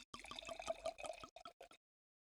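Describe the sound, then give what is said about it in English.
Rosé wine from France pours into a glass, a steady glugging stream with a quick rhythmic pulse, ending in a few short separate splashes before falling silent. “Zemiraval Rosé from France, and we're going to start pouring now,”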